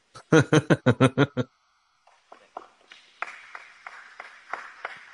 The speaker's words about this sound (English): I want to hear that one more time, if you don't mind. It's kind of funny because, like you said, one person claps.